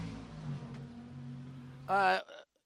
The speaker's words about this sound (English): I just heard your car pull up. I think it's time for you to go drive.